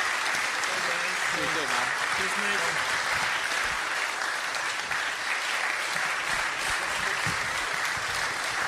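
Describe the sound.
Sustained applause from an audience for a man who has to leave, a dense steady wash of clapping that holds at an even loudness for the whole stretch, with faint voices murmuring underneath early on.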